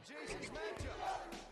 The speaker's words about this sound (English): ECW chant going. Yeah, there you go.